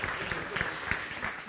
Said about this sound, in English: Okay, so thank you very much to all our audiences here as well as all speakers here and sharers on stage. Let's give them a round of applause, everyone.